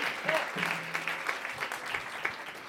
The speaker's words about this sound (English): You guys, let's give him one more huge round of applause. That was just gorgeous.